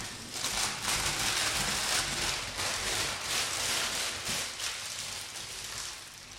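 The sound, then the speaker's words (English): Beer being poured out of a can during a blind tasting, a steady bright fizzing hiss that holds for several seconds with slight surges, with no talking. “This is going to be interesting pouring it without seeing anything or spilling it all over the bag.”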